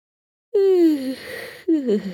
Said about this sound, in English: He yawned again.